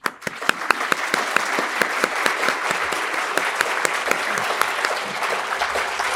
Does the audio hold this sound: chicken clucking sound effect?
no